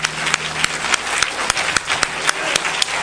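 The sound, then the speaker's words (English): An audience claps together with all its might to the Lord, a dense, steady wash of applause with sharper individual claps popping out at a fairly regular pace, loud and sustained with no talking. “Now, I would like, if you would please, to clap with all your might to the Lord.”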